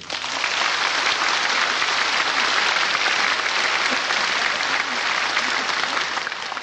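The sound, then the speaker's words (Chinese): Loud, sustained applause from a large audience at a crowded gathering in Taiwan, welcoming Supreme Master Ching Hai to give a teaching: a dense steady wash of clapping that holds at full strength for several seconds with no voices breaking through. “现在就请各位来宾、各位大德以最虔诚的心、最热烈的掌声恭请上清下海无上师为我们开示。”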